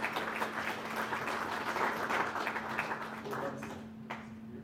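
A crowd applauds steadily for several seconds, a dense wash of many hands clapping that tapers slightly toward the end, with a faint low hum underneath.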